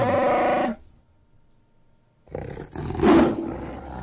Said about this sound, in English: Oh no, that was a lion. Yeah, that was a lion. I think that was MGM trying to slip their logo in there. That was a lion. Anyway. You see, even the lion had more character, like more emotion in it, in his growl. It sounded like a real animal.